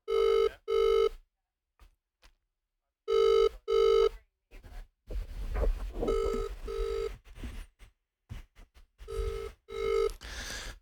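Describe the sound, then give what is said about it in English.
An outgoing phone call rings out in repeated double-pulse ringback tones, clear and steady, with brief silences between pairs and some muffled background noise beneath the later rings. “See if these H2O boys pick up their phones.”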